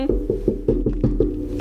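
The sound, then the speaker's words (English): Knuckles rap on wood about seven or eight times in a quick, steady rhythm, each knock short, over a low constant hum and with no one speaking. “We need to knock on some fucking wood.”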